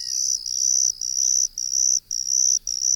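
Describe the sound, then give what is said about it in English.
A confused ground cricket trills steadily at a high pitch, its buzzy song broken by short pauses into repeated two-part phrases, clear with no other sounds. “you'd find it hard to confuse its song with the two-part trills of this one.”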